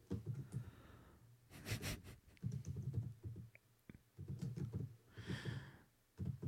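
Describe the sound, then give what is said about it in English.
Clatter of keys being struck on a computer keyboard with caps lock on, irregular bursts of clicks with brief pauses, mixed with a low hum and some breathy noise. “I'm trading this keyboard in.”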